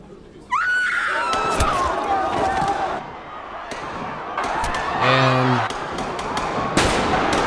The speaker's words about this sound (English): Gunshots, people getting shot all over the place. Panic ensues. Just insane.